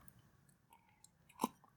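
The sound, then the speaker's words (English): A single short sip of homemade cocoa-infused rum from a glass, fairly quiet, a brief wet mouth sound standing alone against soft room tone. “I've infused this rum earlier, and it's turned out very promising. Sip.”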